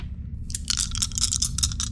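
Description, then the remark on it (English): Dice clatter across a hard surface in a quick flurry of sharp clicks and rattles over a low steady background rumble, with no one speaking; a die is rolled twice. “Oh, why are you rolling a dice twice?”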